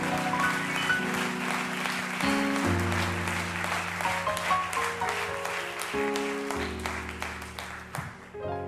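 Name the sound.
audience clapping hands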